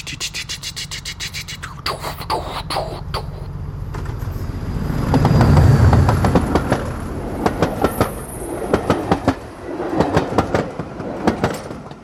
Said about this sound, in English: And I still have a great fascination for train sounds. Oh gosh, what can I talk about trains first? You know, the old trains, so mechanical, all the linkages. It's a really tight band. You know, you hear.